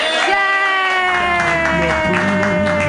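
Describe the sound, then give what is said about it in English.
A comedy show audience cheers and whoops loudly and steadily for a comedian's jokes, with scattered clapping mixed into a dense wall of excited voices that holds for about three seconds. “If you loved it that much, clap wildly.”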